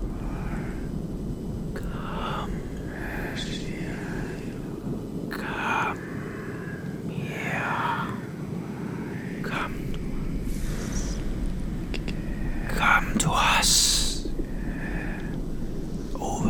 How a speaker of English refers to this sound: And then you started hearing whispers.